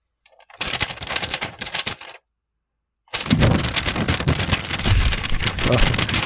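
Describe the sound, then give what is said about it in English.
Crackly rustling of paper in two bursts, a short one then a longer steady stretch after a brief pause, dense and scratchy, as someone sorts through a mailbag. “Couldn't you hear me ruffling? Being attacked by a paper monster.”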